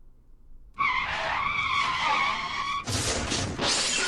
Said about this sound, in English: Can you play the car crash drop here? Because I think I just car crashed the whole segment.